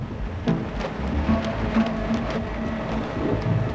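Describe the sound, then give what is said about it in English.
A tarpaulin flaps outside in irregular slaps and smacks, roughly half a dozen sharp hits over a steady rushing of wind and rain-like noise, with no one speaking. “Das Klatschen draußen. Das ist normal, das ist die Plane.”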